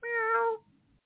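A man's voice imitates a cat with one drawn-out, steady meow lasting about half a second, fairly loud, followed by a brief faint rumble and then silence.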